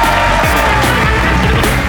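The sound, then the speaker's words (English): A large audience at the Leicester Square Theatre applauds guest Adam Kay, a loud, steady wash of clapping with a few whoops and cheers rising through it, and no one speaking. “Ladies and gentlemen, please give a massive round of applause to Adam Kay.”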